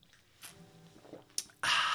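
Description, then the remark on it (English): Someone drinks water, with soft wet gulps and swallowing sounds, then a sudden loud, breathy exhale at the end. No one speaks. “Refreshing. That's water. Yeah, I know. They can hear you, though.”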